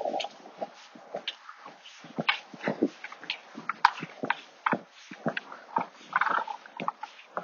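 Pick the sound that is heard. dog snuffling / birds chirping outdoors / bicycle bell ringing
dog snuffling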